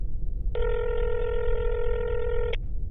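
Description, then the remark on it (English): A single ringback tone on a phone line as a call is placed, a steady electronic buzz lasting about two seconds, heard over a low, rumbling background hiss. “It's ringing.”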